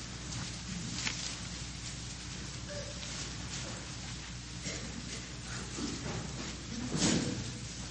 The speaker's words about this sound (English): Yeah, that's the rustling of pages that you hear. Matthew chapter 7, verse 13.